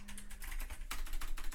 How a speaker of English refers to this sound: I'm sure you can all hear my wonderfully noisy keyboard.